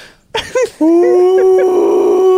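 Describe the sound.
A voice imitates a golden retriever in pain, giving a couple of quick whimpering yips and then a long, steady, mournful howl held to the end, loud.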